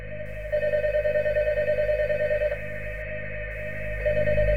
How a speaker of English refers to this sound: All the kids' parents, except for one of them, have come and picked up their kids, but the gym phone is ringing.